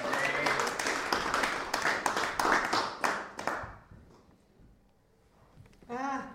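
A crowd applauds with dense, loud clapping that fades out after about four seconds, followed by a brief quiet and then a voice starting to speak.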